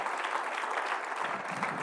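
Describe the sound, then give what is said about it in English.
A crowd clapping together in a steady, dense patter of applause that fills the space, fairly loud and continuous with no voices standing out. “Come on, clap your hands unto the Lord.”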